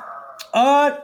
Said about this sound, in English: Yeah, we can hear your dumb dog. Okay, cool. I'm sorry, I love your dog.